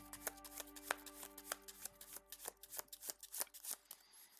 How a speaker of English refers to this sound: Alright, so I think the encounter deck is sufficiently shuffled. We'll give it one more shuffle here